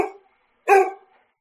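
A dog barks twice: a short clipped bark right at the start, then a fuller, louder bark a moment later, with silence between and after.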